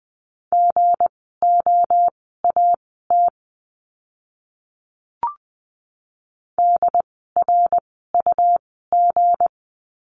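Morse code practice words sent at about 20 words per minute in a lesson on the letter g: a steady mid-pitched tone keyed into quick clusters of dots and dashes, with a pause and a short click midway before more letter groups follow.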